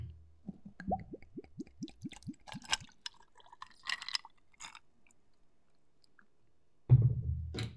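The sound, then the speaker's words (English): A Red Bull energy drink is poured into a glass: liquid glugs out in a quick run of rising gurgles, followed by splashy fizzing bursts, then a loud low thump near the end. No one speaks. “It needs like an energy drink to kind of give it that little fizzle. Let's hear.”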